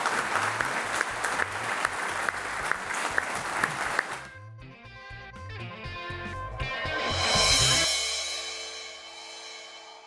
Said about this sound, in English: Ladies and gentlemen, we're just about 8 o'clock, so it's down to me just to encourage you all to give a warm round of applause to Jim Goodwin and thank us for joining us.